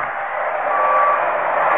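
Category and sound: vehicle, lorry reversing warning beeps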